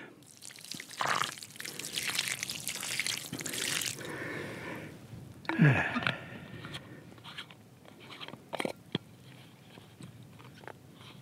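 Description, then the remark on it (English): Water is poured from a bottle onto a small tree in the dappled shade of a pencil cholla in a few short bursts, splashing and trickling, with gurgles and drips between pours against a quiet outdoor background. “A little water for you.”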